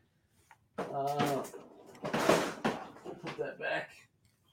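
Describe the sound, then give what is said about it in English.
A drawer full of Microfighter sets slides open with a short scraping rush, amid rustling and handling noises while a person talks over it. “Microfighter drawer. Yeah, a whole drawer of them.”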